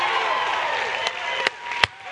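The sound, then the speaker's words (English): A church audience applauds, celebrating over 250 people accepting Jesus Christ at its campuses in the last week, in a steady, dense wash of clapping that holds at an even level throughout, with a few sharper, louder claps or knocks standing out near the end. “You should clap louder about that than anything else we clap about.”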